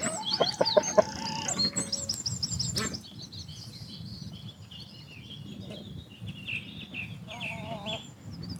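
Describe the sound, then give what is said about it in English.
Several hens cluck and chirp in a chicken run at breakfast time in the morning, first in a busy burst, then settling into softer scattered calls over a low outdoor rumble, with a few brighter squawks near the end. “There were a few clucks as I arrived.”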